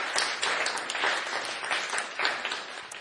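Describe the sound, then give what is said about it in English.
A crowd at a school gathering applauds steadily for a staff member, dense overlapping claps forming a continuous bright wash of sound at a fairly even loudness, with small swells throughout and no voices standing out. “So please give another very big round of applause for Mother Devi Radha.”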